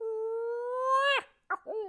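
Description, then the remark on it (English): A homemade predator screamer call, a kind not sold on the market, lets out a long, loud, howl-like wail that climbs slightly and breaks off, then two short, yelping bursts follow. “So I made my own. And my own owl hooting tube and screamer that.”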